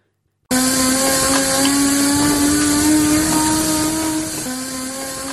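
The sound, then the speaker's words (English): A car powered by liquid air, cooled to almost minus 200 degrees Celsius, gives off a steady, high-pitched mechanical whir with a buzzing, harmonic-rich tone. Its pitch creeps slightly upward, then briefly dips and settles a little quieter near the end. No voices. “That rather high-pitched whir is the sound of a car fueled by nothing but air.”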